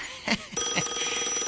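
A telephone that was just unplugged starts ringing after a brief clatter, a bright, continuous metallic ring that stays loud for the rest of the moment, with no one speaking.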